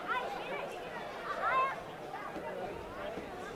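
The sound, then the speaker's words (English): Steady, dense crowd chatter fills a ballpark during a Cougars baseball game, a continuous murmur of many overlapping voices with a few brief high, whistle-like calls rising above it midway through. “Much bigger crowd than we saw last night in the ballpark.”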